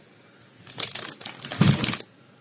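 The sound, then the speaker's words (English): Crinkly plastic snack bag rustling for about a second and a half, a dense burst of crackling and scrunching with a louder crunch near the end, then quiet. “A plastic bag of the ears. This is what it sounds like.”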